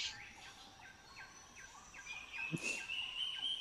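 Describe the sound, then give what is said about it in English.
A reptile's shrill, warbling scream of quick rising and falling squawks, rather like a gobbling turkey, building louder toward the end with a sharp crack midway. “Reptile screams. Sounds accurate.”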